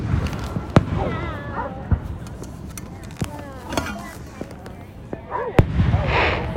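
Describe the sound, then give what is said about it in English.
Independence Day fireworks in 2021 go off outdoors in a series of sharp, loud bangs at irregular intervals, with chatter and other background voices filling the gaps between the blasts. “Happy Independence Day 2021 - Fireworks, Commentary and More”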